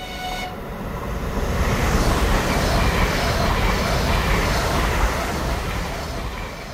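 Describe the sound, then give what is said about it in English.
A train rumbles past, a dense, steady roar of wheels and carriages that swells quickly and holds loud for several seconds before easing slightly at the end, used as a sound cue in a theatre production. “And we all kind of look to the right, kind of looking over, and a train passes by. And we need that sound cue to come in straight away.”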